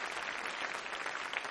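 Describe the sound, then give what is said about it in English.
A church crowd claps steadily for the church staff, a dense, even wash of many hands with no pauses and no voices over it, holding at a strong, constant level throughout. “Let's give the staff a great big hand.”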